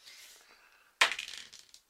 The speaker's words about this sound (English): are these dice loaded? Because we just keep rolling fours and fives.